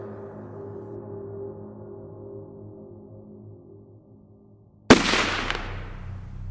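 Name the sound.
gunshot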